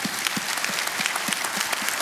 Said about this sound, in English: Now let's clap that in our spirit, okay?